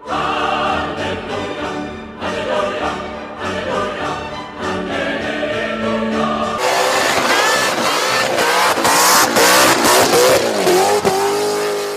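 A car engine revs loudly in a series of short bursts, then breaks into a sustained, rough roar with pitch climbing as it accelerates. No one speaks.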